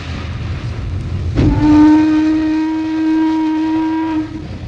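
A steam locomotive rumbles on the tracks, then a loud, steady steam whistle blasts for about three seconds over the low chugging, fading out near the end.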